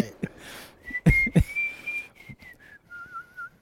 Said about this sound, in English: with one of us whistling African in the back.